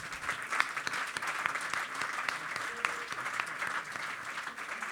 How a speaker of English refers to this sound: So let's give both of our panelists a round of applause.